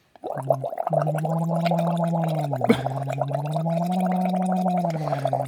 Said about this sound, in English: I literally have to like blow bubbles while humming